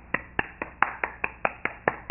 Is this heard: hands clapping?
yes